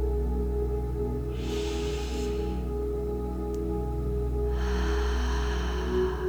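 A slow, deep, airy breath drawn in, a pause, then a longer, fuller breath out, both soft, over a steady low ambient drone with no talking, as part of a guided grounding breathing exercise.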